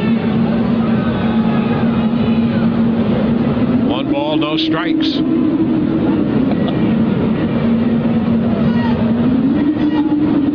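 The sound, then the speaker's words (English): An eerie, trumpet-like 'sky trumpets' drone holds one low, sustained brass-like tone for the whole stretch, wavering and rising slightly in pitch, heard during a baseball game broadcast while a sports commentator talks over it. “To me, it's the sky trumpets is an appropriate way of describing it”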